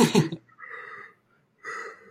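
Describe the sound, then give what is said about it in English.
A breathy yawn at 11 p.m.: a sharp, loud intake of air followed by two drawn-out, airy exhalations with a soft vocal hum, separated by a short pause. “Sorry, I had to yawn there.”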